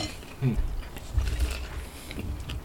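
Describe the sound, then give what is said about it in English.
Wet, squishy biting and chewing of a yellow tomato right into a microphone, with crackly mouth clicks and low muffled thumps in irregular bursts over a few seconds. “Yeah, so we're gonna try and avoid too much chewing into the mic.”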